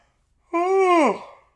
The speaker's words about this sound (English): While you were yawning.